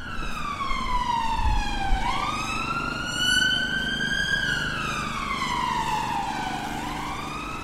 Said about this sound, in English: So as we come to the end of Richmond Terrace, we're back on Whitehall. You can hear the traffic pick up again.